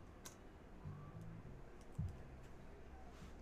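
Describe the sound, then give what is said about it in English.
Faint, scattered clicks of someone typing on a computer keyboard: a few irregular keystrokes spread out over a few seconds against a low background hum, with no one speaking. “Reactions to playing still working on my typing skills, y'all. Give me a second.”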